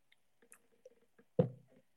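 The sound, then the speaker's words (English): Quiet wet mouth sounds and small clicks as someone drinks water, then one louder gulp of swallowing water about halfway through, fading quickly. No one speaks. “I'm going to get another drink of water.”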